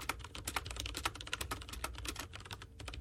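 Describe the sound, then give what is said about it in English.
Rapid, steady typing on a thick gaming keyboard with a big heavy metal base, rubber feet and added rubber cushions on the keys, a dense run of soft, muted keystrokes with no voices. “You see, it's got a big heavy metal base and rubber feet, so that kind of cushions a lot of the sound out.”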